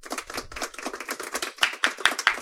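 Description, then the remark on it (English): A small group applauding, with rapid overlapping claps forming a steady patter; a few sharper, louder individual claps stand out toward the end. No voices are heard. “Some real applause.”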